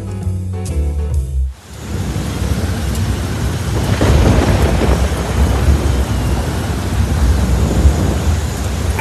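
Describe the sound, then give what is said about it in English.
A short burst of music cuts off, giving way to a steady roar of heavy rain with deep, rolling thunder rumbling continuously underneath, loud, with no voices, during Hurricane Ian in Florida. “I just need my hair to stay put in this storm.”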